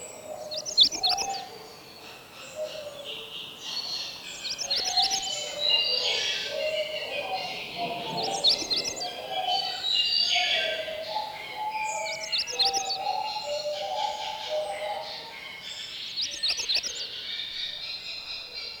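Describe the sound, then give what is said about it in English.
Short, thin magnolia warbler songs repeat every few seconds over a faint chorus of other birds, each phrase brief and weak. “Songs of magnolia warblers are short, weak, and colorless.”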